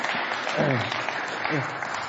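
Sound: audience clapping hands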